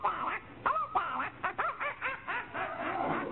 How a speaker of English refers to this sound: What's that? There's a parrot over there. Isn't it cute? Where? Oh, yeah, in that cage.